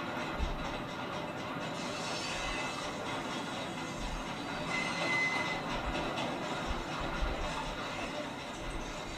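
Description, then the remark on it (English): A train thunders past on a bridge over a gorge, a loud continuous rumble with rhythmic clattering of wheels and a brief metallic squeal partway through; no voices are heard. “Hang over a gorge while a train runs over the top, and try not to let go, but then also don't get too tired in your arms,”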